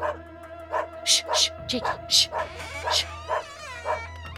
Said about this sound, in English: It was around 9 p.m., I do believe. I heard my dog yapping outside. I told him to shush, but he wouldn't let up, so I decided to investigate.